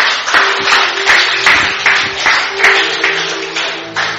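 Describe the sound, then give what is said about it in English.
An audience claps steadily together as a 'clap offering' at the close of a religious meeting, a dense, bright wash of many hands with rhythmic pulses roughly every third of a second, loud and sustained throughout with no talking. “And a clap offering to that.”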